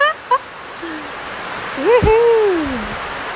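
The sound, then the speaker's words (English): Heavy rain pours down in a jungle as a steady, dense hiss, with a few brief rising and falling tonal calls cutting through the downpour. “So it's continuing to pour rain, but I think you can hear me pretty good.”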